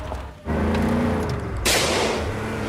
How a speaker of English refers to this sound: The car swerves dangerously as the fight continues.